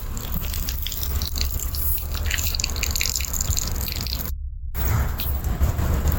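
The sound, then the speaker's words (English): Watery liquid drips and patters steadily onto pavement, a dense run of small splashes over a low background rumble, with one brief muffled gap partway through. No one speaks. “There is some frequency going on back here with water falling.”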